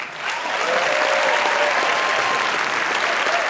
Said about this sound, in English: Round of applause for all our storytellers.